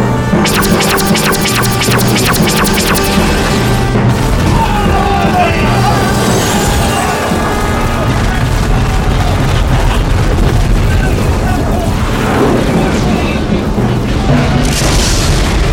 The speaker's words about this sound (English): Artillery battalion is open. ICM. Over. Artillery battery is open. ICM authentication Tango Foxtrot. Over. I'll authenticate Echo. Out. Firing main batteries. Now.